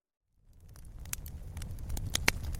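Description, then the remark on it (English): A crackling fire in a smokeless Solo Stove fire pit fades in from silence: a steady low roar of flames with sharp, irregular pops and snaps scattered on top, growing slightly louder toward the end. “Ah, you hear that? The sound of a crackling fire. But this isn't just any old campfire. This is a smokeless solo stove fire pit.”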